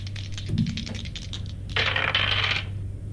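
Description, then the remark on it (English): Dice being rolled for a hit roll in a game, landing on a 10: a quick run of light clicks and clacks, then a louder, denser rattle as they tumble and settle, over a faint steady low hum with no talking. “Roll for hit.”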